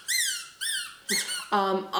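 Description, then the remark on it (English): A squeaky toy squeezed four times in quick succession, each squeak loud and shrill with a slight pitch bend, the last one lower and buzzier, with no talking. “I don't know if there's, like, officially a rule against squeaky toys in Barn Hunt.”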